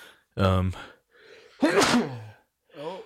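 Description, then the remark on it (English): A single sneeze: a voiced inhaling build-up, then a sharp, loud, breathy burst that trails off, followed by a short voiced sound afterward. “Bless you.”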